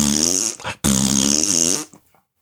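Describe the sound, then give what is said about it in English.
A person sticks their tongue out and blows a loud, sputtering raspberry with their mouth, two buzzy bursts with a brief break between, imitating a fart, with no talking. “I walked up after I went to the drugstore, and I saw you standing behind the man and sticking your tongue out and making fart sounds with your mouth.”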